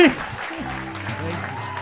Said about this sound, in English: Ladies and gentlemen, a big round of applause